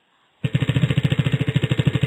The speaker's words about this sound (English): Let's spin the wheel and see what you win. All right, very good.